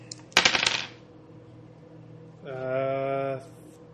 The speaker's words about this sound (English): I'm rolling one dice.